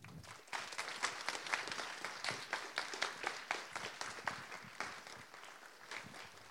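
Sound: audience applause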